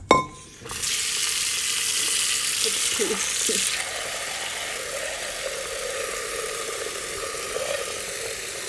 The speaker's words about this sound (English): Okay, so today's activity, making noodles. Okay, come here. Okay, so this is the water going into the pot.